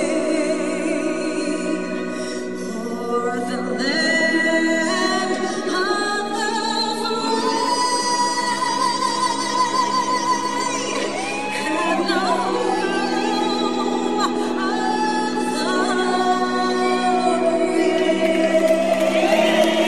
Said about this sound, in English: singing the national anthem at the Dodgers game. And I've got the audio for you next.